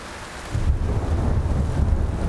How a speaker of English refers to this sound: It was pouring by then, and lightning flashed in the sky.